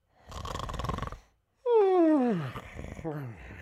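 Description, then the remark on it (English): A voice imitates a man snoring while he sits still with his feet up: a raspy, rattling inhale followed by a loud, descending voiced groan on the exhale, then a few trailing sputters. “as you just hear him snoring.”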